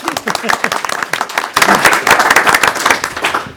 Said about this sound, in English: I think we get a round of applause for that.